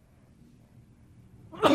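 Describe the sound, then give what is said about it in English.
A single sharp sneeze bursts out at the very end, after a stretch of quiet low background rumble. “Oh, bless me. Bless you.”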